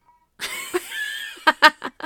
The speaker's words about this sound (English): My cat is very upset that he's not in here with us. He's crying. Everywhere.